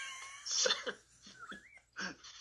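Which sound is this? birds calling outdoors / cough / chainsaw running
cough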